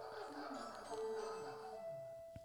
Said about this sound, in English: I'm trying to see what it is. It's just a doorbell shit. But is it somebody or is it a packet?